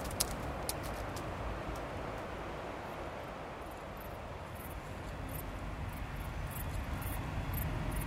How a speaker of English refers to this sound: Under the hum of distant traffic, I listen out for signs of life.